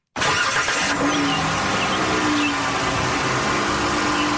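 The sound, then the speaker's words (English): A car engine roars to life abruptly and revs loudly, a sustained mechanical growl that holds steady for several seconds with no voices over it. “Know that sound? Now the WTOP car review.”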